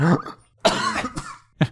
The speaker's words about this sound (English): I went to mock gasp and then I choked on something.